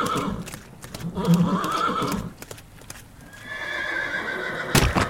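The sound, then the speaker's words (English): A horse ridden by a general through dark woods amid frequent flashes of lightning whinnies loudly, its rising, wavering cry stretching across several seconds, while hooves clop in sharp, uneven strikes underneath. “Making their way through the woods in these blind conditions, the general can only hope and trust that his horse can find its footing.”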